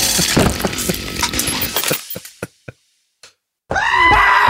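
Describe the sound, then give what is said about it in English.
A burst of harsh, chaotic clatter gives way to a few sharp clicks and a brief silence, then a loud, strained goat scream blares and runs to the end. “I'll slice goats for you, and you're there for me too.”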